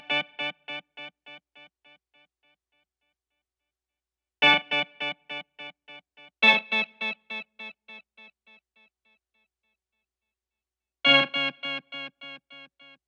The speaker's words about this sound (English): I wanted something that had that sort of 80s echo, sort of just baked in the sun timbre to it. So I came up with something I'm pretty proud of here.